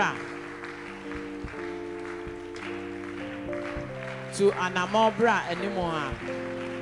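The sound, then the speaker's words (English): An audience claps in a steady, dense wash of applause beneath sustained keyboard chords, with raised voices swelling over the music toward the end. “Your clapping is not.”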